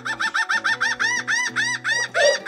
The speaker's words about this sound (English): Did you get that bird out of your video, dude?